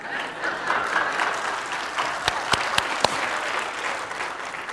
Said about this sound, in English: Now, did you know that Pastor Kevin just had a birthday? This past Thursday. You don't need to applaud. It's not that important.